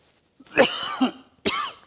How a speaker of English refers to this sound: Excuse me. That's the worst with those things. If you have to cough, they can blow your eardrums.